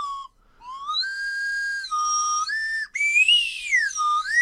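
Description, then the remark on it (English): A slide whistle blown in long, sustained notes that swoop up and down in pitch, broken by two short gaps, loud with no talking. “When we get our first paycheck from our first advertiser on the Lil Show, I'm going to buy you a proper tin slide whistle.”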